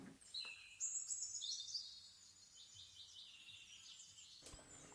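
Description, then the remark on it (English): Birds chirp in quick, high twittering bursts that rise and fade over a few seconds, fairly faint against a quiet outdoor background, with no one speaking. “Sorry about the bird sounds at the end.”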